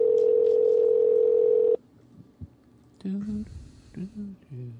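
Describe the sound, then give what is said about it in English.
A loud, steady telephone dial tone hums for nearly two seconds, then cuts off abruptly, leaving a quiet line before a voice begins speaking. “Hopefully she'll answer the phone this time.”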